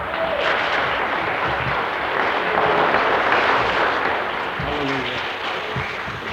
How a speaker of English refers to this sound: Give him a clap.